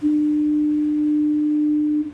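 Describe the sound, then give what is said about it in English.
The Fort Amherst foghorn sounds one long, steady, low blast as fog rolls into the harbor, loud and unwavering for about two seconds before cutting off, with faint background hiss underneath and no voices. “Okay, this is a recording of the Fort Amherst foghorn.”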